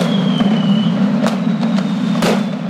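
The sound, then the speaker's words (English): Several sharp fireworks bursts pop at irregular intervals over a steady low rumble, with a faint high whistle trailing through the first part. No one speaks. “Finally this week, cracking down on fireworks.”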